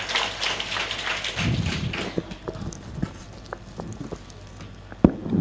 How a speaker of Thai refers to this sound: ขอเสียงปรบมือให้ด้วยนะครับพี่ด้วยนะครับ